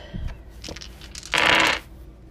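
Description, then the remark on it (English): Old dice are rolled across a hard surface: a few light clicks, then a short, dense rattling clatter before it settles. No one speaks. “Got some cool old dice right here. We're going to roll those.”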